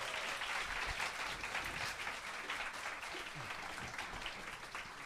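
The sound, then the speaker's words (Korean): A steady burst of audience applause, many hands clapping at once in a dense, even wash that holds at full strength for about five seconds with no voices standing out, welcoming author Son Mi-na at a public recording in a studio. “손미나 작가님 네, 박수로 작가님. 맞이해주세요.”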